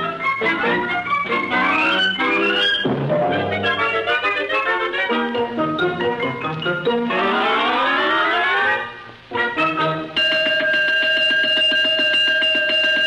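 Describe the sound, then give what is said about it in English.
A loud, ringing 'cosmic alarm' sound effect with rising, wavering electronic tones that sweep upward repeatedly, pause briefly, then settle into a steady, sustained blaring ring. No voices. “The cosmic alarm, which means I fear some woeful harm is afoot or a wing in the universe.”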